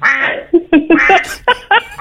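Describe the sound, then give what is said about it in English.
A duck in West Cork quacks in a quick run of short, nasal bursts, about six calls in two seconds, fairly loud with no one talking. “We did contact her for comment.”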